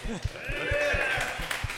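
Audience applause at the Comedy Butcher live stand-up comedy show swells into a steady, loud roar with shrill whistles riding over it, while a regular low thumping pulses underneath.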